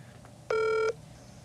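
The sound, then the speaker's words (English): A single steady electronic telephone tone sounds once for under half a second as a phone call is placed, clear, with only a faint background hush before and after and no talking. “Let's see if we can get Lou on the phone.”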